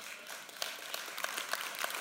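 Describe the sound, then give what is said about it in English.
Sparse, scattered clapping from a small audience, a handful of people giving light, polite applause with distinct individual claps spread unevenly across a couple of seconds. “Now that's a golf clap. That's a golf clap.”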